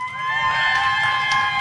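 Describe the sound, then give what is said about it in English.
A crowd bursts into sustained cheering and whooping on cue, with clapping mixed in, a loud, steady wall of voices lasting under two seconds with no one speaking over it. “Here's the clap. Ready, you guys? Clap.”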